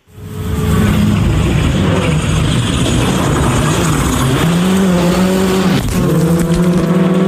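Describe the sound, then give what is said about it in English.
A rally car engine roars loudly throughout on a stage at Rally Hawke's Bay, recorded by a GoPro set on the inside of a corner, revving steadily, climbing in pitch, then briefly dropping on a quick gear change before pulling hard again, with gravelly road noise underneath. “How is your camera after Shane took that out in the rallying car?”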